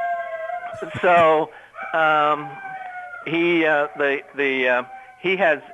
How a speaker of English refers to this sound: Anyway, my dogs are starting to bark. See if I can get away from them.